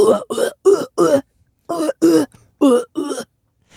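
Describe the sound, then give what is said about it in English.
A voice mimics a sampled keyboard cough, with eight short, punchy cough sounds in a steady rhythm: four in a row, a brief pause, then four more, loud. “Can I say, that was a pretty good impression of that keyboard sound.”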